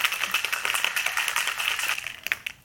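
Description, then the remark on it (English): A cocktail shaker is shaken hard, with ice rattling in a fast, steady, bright clatter that runs unbroken for a few seconds, with no voices; the drink is being shaken before being poured into cocktail glasses. “All right, so a shake and then into cocktail glasses?”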